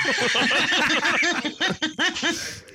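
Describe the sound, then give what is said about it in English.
A voice imitates a pig with a rapid string of nasal oinking grunts, fairly loud, running steadily for a few seconds before breaking into a few uneven final snorts. “Thought there might be another long lost piggy out there looking for his daddy.”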